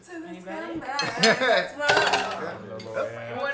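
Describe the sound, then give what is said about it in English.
Glasses clink together in a toast, a few bright, ringing chimes in quick succession over a low murmur of voices in the background. “Put something in your glass. We're gonna toast.”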